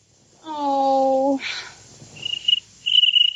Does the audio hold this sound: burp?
no